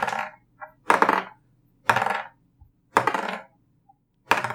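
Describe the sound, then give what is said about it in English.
Dice clatter and bounce across a hard surface and fall off the table, with five sharp, ringing hits spaced about a second apart, loud, and no voices. “Oh, that dice is gone.”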